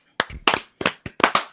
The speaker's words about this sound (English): Gentlemen, that'll be a show. Why don't we clap it out?